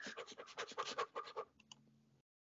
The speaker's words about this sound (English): Listen to my keyboards clacking again.